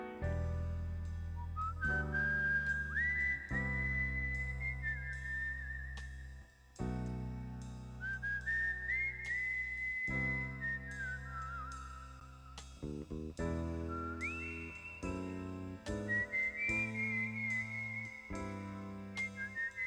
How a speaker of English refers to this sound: That whistle, he whistled to the producer and said, I need to find an instrument that can play this. And he said, no, you don't. Just whistle it. Yeah. Because it sounds really good. Yeah. And it sounds haunting. And it sounds like a PI walking down